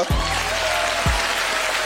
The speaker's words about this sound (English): Yo, give Martin Lawrence a round of applause, everybody, and enjoy the show.